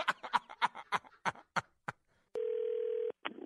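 A brief burst of talk is followed by a steady, flat telephone dial tone, heard while calling someone back, lasting under a second, then it cuts off abruptly as another short sound begins.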